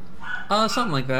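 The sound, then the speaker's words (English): A female dog gives a couple of short, excited barks and yips, overlapping a person speaking briefly; she is excited because someone just came home. “Also, sorry about the dog in the background.”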